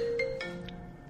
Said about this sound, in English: That literally would not give me an option unless to accept a phone call, because it's going through the laptop.